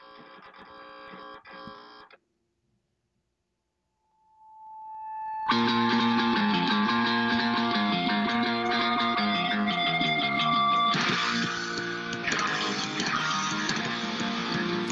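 A punk rock song bursts in loud and dense with distorted guitars, after a short muffled snippet of music, a pause of silence and a swelling sustained tone.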